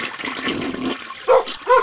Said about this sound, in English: When you hear the toilet flush and you hear the words, uh-oh, it's already too late.